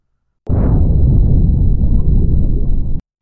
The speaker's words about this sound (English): A second explosion.